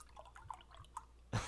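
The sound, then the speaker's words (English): Flat beet soda trickles and drips into a glass in quiet, scattered splashes, then a louder, fuller gush of pouring starts near the end. The sound is rather flat and dead, with no fizz. “It's kind of a dead sound as it goes into the glass.”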